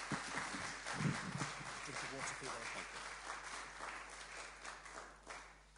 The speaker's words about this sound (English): So let's give him a round of applause and welcome this evening.